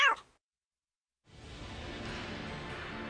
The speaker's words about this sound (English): Hey, where'd all these cats come from?